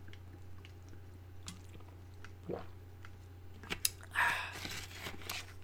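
sipping an energy drink

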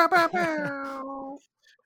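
baby crying

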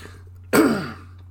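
throat clearing

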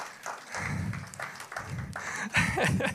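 audience finger snapping

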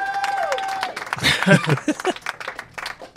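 applause and cheering

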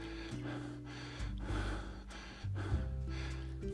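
heavy breathing

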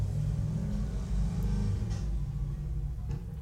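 motorcycle engine revving

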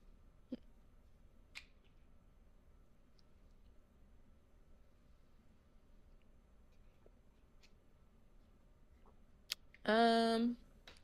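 burp

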